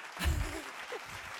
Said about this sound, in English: Applause yes.